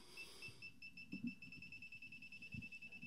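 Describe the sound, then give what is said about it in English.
Rapid, steady electronic beeping at a high pitch from an electronic leveling device set on a desk, repeating without pause, fairly quiet, with a few soft knocks and handling thuds underneath. “You can hear that fast beep going on.”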